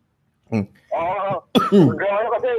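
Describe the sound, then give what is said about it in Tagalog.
A person coughs in a few rough, throaty bursts: one short cough, then two longer strained, voiced coughs in quick succession. “Ayan, nag-iubo-ubo na ako.”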